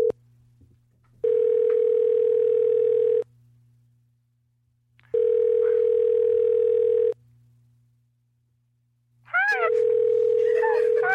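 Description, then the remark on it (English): Telephone dial tone while calling a woman on the Todd Glass Show: three loud, steady two-second tones separated by silent gaps, with a faint low hum throughout and a brief burst of voice near the end. “Oh, we're gonna call her. I'll dial it up.”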